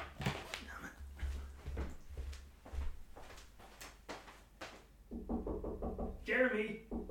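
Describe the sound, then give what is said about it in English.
The neighbor's cat, Jeremy, paws and bumps at a balcony door, producing a run of uneven knocking thumps, then a quick rapid series of taps and a brief high-pitched meow near the end. “Oh, hold on, my neighbor's cat's at my balcony door again.”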